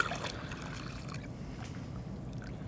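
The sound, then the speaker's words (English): Hot water pours steadily into a bowl for making polenta in a microwave, in a continuous splashing, gurgling stream, fairly loud, lasting a few seconds with no talking. “All right, so now I'm going to add my hot water.”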